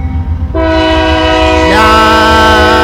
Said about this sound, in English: How old is this train? I'm gonna guess that this train is probably old as fucking Texas. As old as fucking Texas. No, I'm going to definitely say like the 30s. Damn. Maybe the 40s.